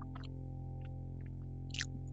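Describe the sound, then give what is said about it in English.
Soft chewing of food with a few moist clicks and crunches spread irregularly across a couple of seconds, over a steady low electrical hum; nobody speaks. “I love hearing you chew.”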